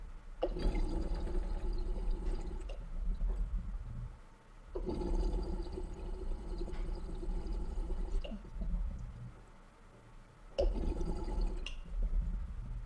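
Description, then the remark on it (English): Water gurgles and rushes as about half a gallon drains out of a pipe through the small, restrictive hole made by a nail, coming in three loud, churning surges separated by brief lulls, with no one talking. “Thing sounds nuts when it drains.”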